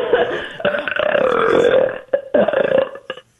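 A woman's long, loud belch that rumbles on for about two seconds, then breaks into a few shorter croaking bursts before cutting off.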